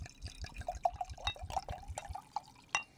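A drink bought at Costco being poured into a glass, with steady glugging and bubbly splashes in an uneven rhythm and a brighter plink near the end. No one speaks.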